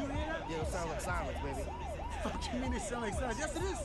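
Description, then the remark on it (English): An old military siren, one used in the movie Purge and for many years, sounded by police, with a muffled tone rises and falls in quick, repeated sweeps, steady and loud, over a low murmur of crowd noise and voices. “And one of the officers who is military approached me and said, well, you know, Chief, there is an old military siren that was used.”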